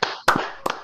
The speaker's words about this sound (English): Tony, we're going to clap. We're going to give him the Pittman.